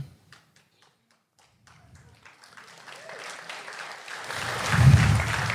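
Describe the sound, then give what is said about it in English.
A few scattered, isolated claps give way to applause that swells steadily into a dense, loud wash of clapping, peaking just before the end. “Yeah, you can't get clap happy a quarter of the way through the dollar.”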